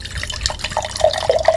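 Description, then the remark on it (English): Cider pours into a glass in a steady stream, with a bright gurgle rising in pitch as the glass fills. No one speaks. “I'm just recording the sounds. Of you pouring the Foley artistry.”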